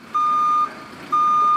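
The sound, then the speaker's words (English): A truck's reversing alarm, played as a studio sound-effect button, beeps loudly: two long steady electronic tones separated by a short pause, with a faint engine rumble underneath and no talking. “Truck backing up.”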